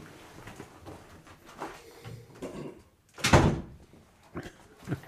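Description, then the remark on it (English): A door is pushed shut with a single solid thud partway through, preceded by soft handling and shuffling sounds. A faint knock or bump follows near the end. “I'll close the door.”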